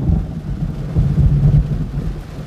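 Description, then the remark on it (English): A deep, rolling rumble of thunder fills the whole stretch, loud, swelling midway over a steady wash of heavy falling rain during a storm in Southern California. No one speaks. “it doesn't rain much in Southern California, but it is coming down right now.”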